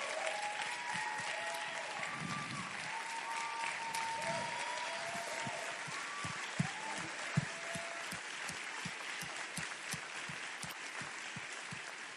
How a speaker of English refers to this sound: And so that was a great applause.